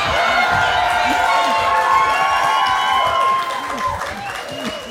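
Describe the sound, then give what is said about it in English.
A live audience cheers, whoops and catcalls loudly, with overlapping shouts and whistles filling the space; the roar stays steady before easing slightly near the end. “Please limit your sexual catcalls to Adam only.”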